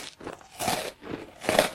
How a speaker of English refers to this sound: I'm recording the first episode of my podcast and you ruined it with your munching.